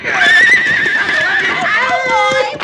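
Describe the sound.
Several horses whinny loudly and shrilly, their overlapping neighs rising and falling continuously for a few seconds, with agitated voices mixed in underneath, as their riders are thrown on a road by something yanked up across it.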